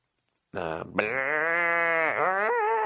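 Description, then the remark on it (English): A person's voice mimics a wounded cow, letting out a loud, strained moo that starts with a short cry, then stretches into one long, wavering bellow lasting a couple of seconds. “I could shoot a cow, but if I didn't kill it on the first shot, I would hear that awful mooing for the rest of my fucking life.”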